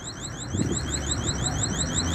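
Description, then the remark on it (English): A high electronic store security alarm warbles continuously in rapid repeating sweeps, steady and fairly loud, going off after somebody took something from the store, with low rumbling background noise and no talking. “Looks like somebody took something from our store and the alarm is going off.”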